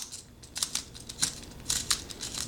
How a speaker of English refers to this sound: All right, so let's take it out, see if it actually sharpened the pencil. And not really. Oh, you don't even need the key. The pencil is sharpening it, actually.